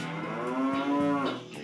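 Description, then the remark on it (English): A person's voice imitates a cow with one long, loud, drawn-out moo, steady before trailing off, with no talking around it. “The Moo Cow.”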